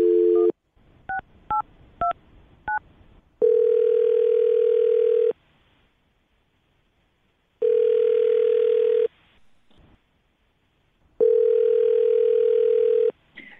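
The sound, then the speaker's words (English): A steady telephone dial tone gives way to a quick series of DTMF keypad beeps as a phone number is dialed, followed by three long, evenly spaced ringback tones with silent gaps between them, with no voices. “Well, I will dial her phone number right now.”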